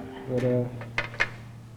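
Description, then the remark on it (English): Batteries get knocked over at a church pulpit, giving two sharp clacks about a quarter second apart, right after a short murmur of voice, then quiet room tone. “Maybe that's why I keep knocking over batteries and stuff.”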